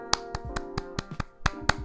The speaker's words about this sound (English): I'm clapping because, hey, humans defeated a Predator. That's gangster.